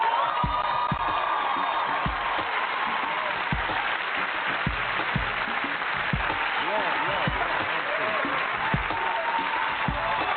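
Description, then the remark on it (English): A large audience applauds and cheers steadily, dense clapping filling the space with scattered whoops and shouts rising above it, loud and sustained throughout, welcoming a singer to the stage at a Def Poetry show. “Ladies and gentlemen, please give a warm Deaf Poetry welcome to my man, Mr.”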